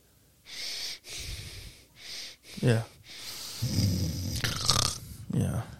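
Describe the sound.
A voice imitates heavy mouth breathing during sleep: a raspy series of airy inhales and exhales with snore-like rattles, repeating in an uneven rhythm for several seconds.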